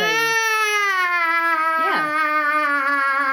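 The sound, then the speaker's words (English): A person loudly imitates a fighting tomcat's yowl: one long, strained, nasal wail that slowly drops in pitch, wavering briefly midway, sustained for over three seconds without pause. “You know how tomcats fight where they go...”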